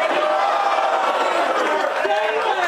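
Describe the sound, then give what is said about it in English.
A live audience shouts its answer to "Jalen Hurts or Patrick Mahomes?" all at once, mostly calling out Jalen Hurts, a loud, dense wall of overlapping voices that holds steady for a few seconds without letting up. “I think I'm hearing a whole lot of Jalen Hurts.”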